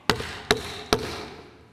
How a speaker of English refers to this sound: And so Jesus says, "I come. I stand at the door and knock." How does he knock?